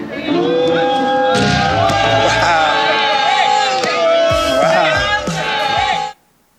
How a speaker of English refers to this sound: Remember, this guy made 9 free throws earlier, but now it looks like the crowd's negative reinforcement is throwing him off his game.